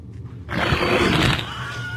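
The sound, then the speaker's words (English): A Wilhelm-like movie death scream for Lance Henriksen's dying character, used instead of his own voice, loud and harsh, bursts out suddenly and holds for nearly a second before trailing off into a fading, rumbling tail. No one speaks over it. “He gets like a Wilhelm scream.”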